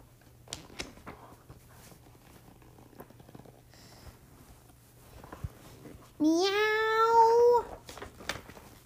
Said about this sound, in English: Meow. Meow, meow, meow, meow, meow, meow, meow, meow, meow, meow.